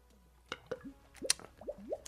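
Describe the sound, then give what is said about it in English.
Two beers knocked together in a toast with a single sharp clank, surrounded by soft gurgling and plopping liquid sounds; no one speaks. “Yeah, let's get our clank sender. There we go. Clank surgical.”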